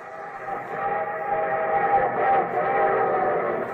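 A train sound effect with a sustained, steady whistle blast layered over rumbling rail noise, loud and continuous throughout with no voices, introducing The Railroad Hour radio program.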